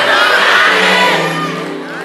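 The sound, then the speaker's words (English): An audience shouts back together in a loud, overlapping burst of many voices, sustained for about two seconds before easing off slightly at the end. “Somebody scream, I don't got it!”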